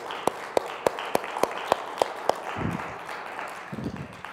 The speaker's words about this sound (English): Can we please give a round of applause for Pastor and the board?